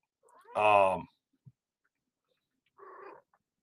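An excited female cat meows twice: a loud, drawn-out meow first, then after a short pause a softer, briefer one, with quiet in between.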